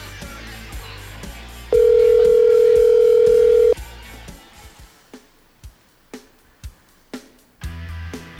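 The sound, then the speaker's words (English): A telephone dial tone from the Ollie's Soundstage phone system hums steadily for about two seconds, followed by a string of short, evenly spaced clicks or beeps as a call is dialed and starts to ring. “So, we're gonna dial this thing up. Yeah, man. There it is. It's cranking. It's ringing.”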